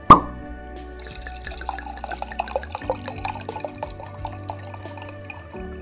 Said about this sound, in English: You pour some more wine and contemplate the wonders of university and the wealth it brought to your mental life.